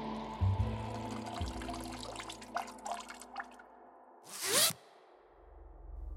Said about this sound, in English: I didn't shake after I finished peeing, and I definitely didn't flush.